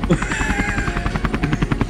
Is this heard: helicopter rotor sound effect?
yes